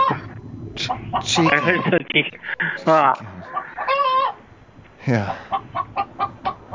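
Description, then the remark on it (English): A chicken clucks in a series of short, nasal calls, ending in quick rhythmic clucks, with people talking over and around it. “Where do I kill this son of a bitch? This chicken?”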